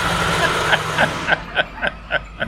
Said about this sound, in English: here comes a fire truck